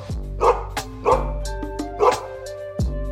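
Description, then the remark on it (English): A police dog named Kraken, sent into a house, barks loudly and repeatedly, three sharp, harsh barks spaced about a second apart, followed by a final shorter bark, with no one talking. “Okay, I'm sending in Kraken. Release the Kraken. Ass whooping dogs in the nighttime.”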